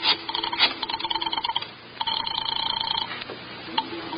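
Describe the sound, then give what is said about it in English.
A telephone call being placed to police headquarters: a ringing phone tone sounds in two bursts with a short pause between, clear, with no talking. “Just a little phone call.”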